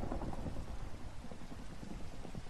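Steady, dense rainfall fills the scene with a continuous hiss and patter, a low rumble running underneath like thunder. No voices, just an even, enveloping storm ambience.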